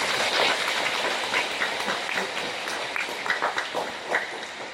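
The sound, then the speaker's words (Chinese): An audience applauds to congratulate the mothers, clapping steadily for nearly five seconds, a dense wash of overlapping claps with no break and no voices, holding a fairly even loudness throughout. “妈妈们辛苦了，再次掌声祝贺他们。”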